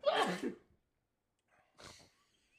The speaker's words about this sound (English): I sneezed.